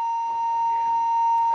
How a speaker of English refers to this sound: Apparently we have a fire alarm here at the hotel. My bad. Really? Like, what kindergartner pulled the fire alarm? All right. So we will be pausing the podcast for the fire alarm.